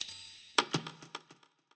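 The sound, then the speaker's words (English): A typewriter borrowed from a friend, its mechanism clacking in a quick series of about seven sharp metallic strikes over a faint lingering ring from the typewriter's bell, with no voices, tapering off to quiet. “I recorded a typewriter that I borrowed from a friend.”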